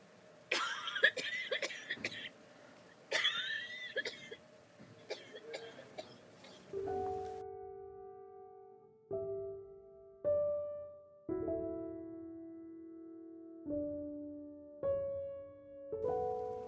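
A woman coughs in a series of harsh, close bursts over several seconds, then the coughing stops and sustained musical notes play on their own.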